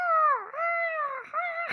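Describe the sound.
A person does a seagull impression: a loud, high-pitched, nasal wailing cry held for nearly two seconds, dipping briefly twice before rising again, with no other talk.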